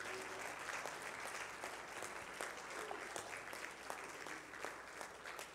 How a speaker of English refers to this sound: Come on, clap those hands and praise him today.